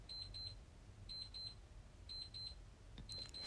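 An alarm clock beeps in repeated quick bursts of four high-pitched tones, pausing about a second between each set, fairly faint against a low background hum.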